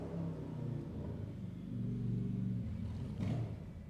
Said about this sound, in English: Just letting the Harley pass. And that's pretty masculine. I should have just kept talking through the Harley.